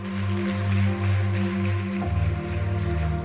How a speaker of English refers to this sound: God bless you. Thank you. Give the Lord a good hand clap today.